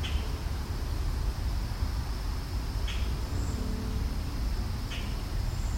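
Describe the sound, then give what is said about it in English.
A few faint, thin, high-pitched ringing calls from a couple of cedar waxwings in an open, high-canopy forest of mostly maples, spaced a couple of seconds apart, barely rising above a steady wash of outdoor background noise. “You can probably hear a couple cedar waxwings.”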